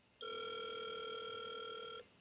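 A single sustained electronic telephone ring, a steady bright buzzing tone lasting nearly two seconds before cutting off, loud with no voices.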